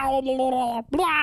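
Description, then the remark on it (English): A person imitates their cat's meow, which they liken to a drowning cat: a long, steady, nasal wail, a brief break, then a second cry that swoops upward in pitch. No other sounds. “Drowning cat? Yeah, he sounds like this.”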